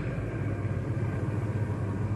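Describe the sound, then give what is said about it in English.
A steady, low engine rumble drones on throughout, a truck idling after being stopped, with a constant deep hum and no voices. “Stop the truck!”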